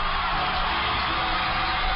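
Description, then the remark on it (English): A large crowd of Ottawa-Glandorf Titans fans cheers and roars, saluting their basketball team after its Division III state title. It is a loud, steady wash of voices that holds without a break for the whole two seconds. “Listen to the Titan crowd as they salute their team.”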